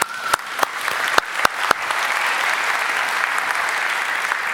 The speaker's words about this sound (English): Wonderful. Give them a little clap.